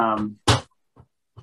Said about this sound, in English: My little son is knocking on my window here.